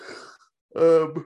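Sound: yawn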